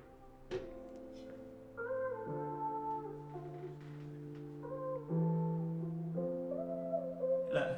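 A song's intro, played from Spotify, plays on its own: sustained, warm synth-like chords shift every second or two, with a soft percussive hit early on and a brighter swell at the end, no vocals.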